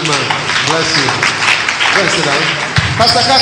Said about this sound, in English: Good. Clap for him.